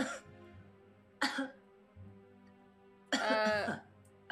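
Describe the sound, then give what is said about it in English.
Three loud coughs: two short ones a second apart, then a longer, harsher throat-clearing cough after a pause, with a low hum underneath and no talking. Someone coughs on purpose to make another person turn around. “Or I'll just cough so that they'll turn around and you can see their face.”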